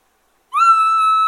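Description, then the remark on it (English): After a moment of silence, a latex diaphragm turkey call, played at the right side where the cut exposes the latex, with steady tongue pressure and steady air, lets out one steady, sustained whistle, a clear tone held at an even pitch. It is loud, with no other sounds. “If you go to the right where that cut is, in that exposed latex, you'll find the whistle.”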